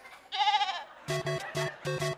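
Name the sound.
sheep bleating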